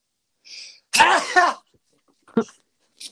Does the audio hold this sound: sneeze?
yes